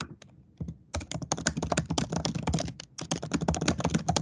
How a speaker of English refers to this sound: Okay, I'm just typing up some notes here.